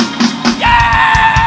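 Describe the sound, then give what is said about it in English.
A crowd lets out a loud roar of yelling, with short bursts of shouts giving way to a sustained, high-pitched cheer held over low thumping beats. “My God, listen to this place. Send up a roar!”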